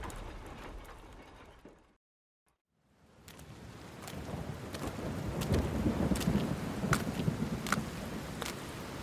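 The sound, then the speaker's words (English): Steady rain hisses, cuts out briefly to silence, then returns as a low rolling rumble of thunder swells underneath, with scattered sharp crackles throughout. No voices. “Kid, never had a chance in this storm.”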